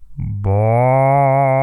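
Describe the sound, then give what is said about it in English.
A person's voice imitates an animal call with a loud, sustained low moo that sounds more like a cow than a whale, held steadily for over a second after a brief rumbling start. “All right, everybody, make your best whale noise.”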